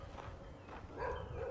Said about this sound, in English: And another dog barking at those other dogs. So lots of dogs around here.